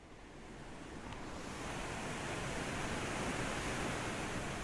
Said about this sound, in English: That is not static, nor is it a waterfall or a river in the traditional sense. It is indeed water, and a lot of it. Standing above it, there is a sharp mist filling the air as this brown water just dumps through the opening in the dam.